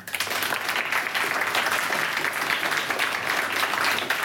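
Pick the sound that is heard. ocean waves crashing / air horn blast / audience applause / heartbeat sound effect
audience applause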